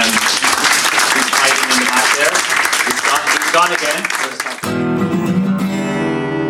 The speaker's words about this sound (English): I want to just thank Paco again, and we give him a round of applause.